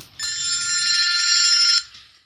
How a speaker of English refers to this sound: it's time to discuss something very topical going on here in Australia, and that's the whole aspect of airport telephones going off, getting in the way.